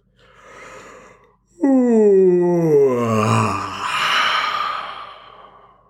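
A long, drawn-out yawn: a soft breathy intake, then a loud voiced groan sliding downward in pitch, trailing into a long airy exhale, with no other sounds around it.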